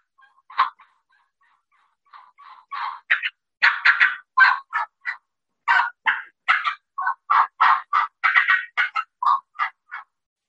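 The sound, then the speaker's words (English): An imitation of an excited hen turkey yelping with cuts thrown in: a fast, uneven run of loud, sharp yelps broken by clipped cutting notes, rising in pace, volume and pitch, clear for about eight seconds with no talking. “Go more like an excited hen yelp”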